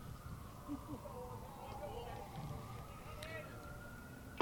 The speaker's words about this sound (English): A lot of police cars around the Tech campus here, making some noise.